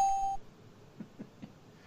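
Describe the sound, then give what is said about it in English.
A single short, steady electronic positive-buzzer ding rings out at a bright mid pitch, cutting off abruptly, followed by quiet and three soft, evenly spaced low thumps. “I'll give him the positive buzzer.”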